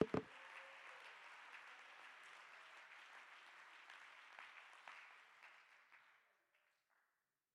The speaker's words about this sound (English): Clap your hands and give God the praise. Come on, let this place roar with the praise of reality that we serve a loving Father.